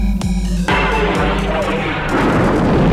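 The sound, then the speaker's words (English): A massive Star Wars sci-fi energy blast from the space station's superweapon firing on the planet Alderaan erupts loud, a sharp crack giving way to a sustained roaring, crackling rumble of destruction that fills the whole few seconds. “have chosen to test this station's destructive power on your home planet”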